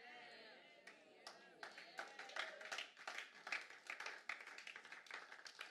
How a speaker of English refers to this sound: Only 4 people clapping, because when you leave, you got another pastor you're going to appreciate on TV.